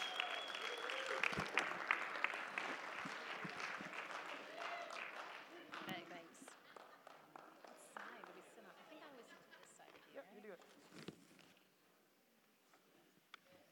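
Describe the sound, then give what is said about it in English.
An audience bursts into loud, dense clapping after spinning around and waving to greet their neighbours, welcoming the morning's speakers; the clapping gradually thins and fades over several seconds, with scattered voices and chatter mixed in and lingering as the applause dies away. “We just spin around, wave, and then bring it into a clap.”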